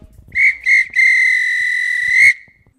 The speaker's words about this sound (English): This were a real bit of extra time. This is when the ref will blow the whistle, because it's finished.